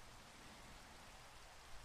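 Steady rain falls in a soft, continuous hiss, an even wash of patter with no breaks or distinct drops standing out, and no voices.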